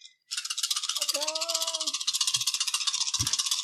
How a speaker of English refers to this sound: That's a lot of dice. Yeah, it is a lot of dice. Or 12. Nine dice. All right. Roll them up.